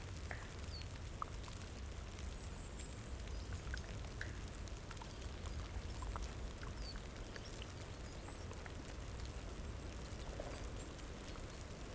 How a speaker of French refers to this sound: Peut-être qu'il suffit d'écouter la neige fondre pour se dire que c'est le printemps qui arrive à petits scrips.